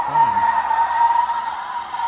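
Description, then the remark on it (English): A pickup truck's tires spin in place with a steady, high-pitched whine and rough scrubbing, holding at constant loudness for a couple of seconds without gaining traction. “I'm watching the tires of the truck. Do they ever go forward?”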